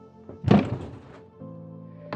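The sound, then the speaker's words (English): A single heavy, dull thud of the recoil pad of a Savage rifle's butt banged against a wall to get a killer's attention, fairly loud, followed by a steady low hum and a faint knock at the end. “Doug banged the recoil pad or butt of the rifle against the wall to get the killer's attention”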